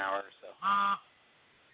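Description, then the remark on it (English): A phone's email notification sounds once: a single loud, buzzy, steady-pitched tone lasting about a third of a second, right after a man speaks and followed by quiet. “That was my phone receiving an email.”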